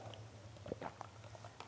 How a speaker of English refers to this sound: All right, I am back. And you probably can tell I'm chewing gum at this point.